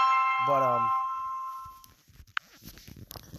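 A phone message chime rings out once, its bright, bell-like tones lingering and fading over a couple of seconds before giving way to faint movement and rustling.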